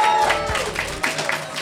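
An audience at a live show applauds, a dense, steady wash of many hands clapping at a fairly even loudness throughout, with a few scattered voices mixed in, honoring the work of a band.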